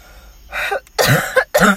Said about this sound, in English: I'm sorry, guys. I don't know what's going on with this cough, but it might be with us throughout the whole podcast. So I hope you don't mind, because I don't want to just stop recording over a cough.